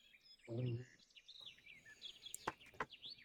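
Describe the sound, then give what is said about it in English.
Birds chirp and twitter steadily over a quiet outdoor background, with a brief low vocal-like sound early on and a couple of sharp clicks near the end. “All you hear is the birds chirping and the wind blowing slightly.”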